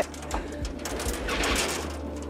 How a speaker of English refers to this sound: Some sight to see these pigeons getting out now.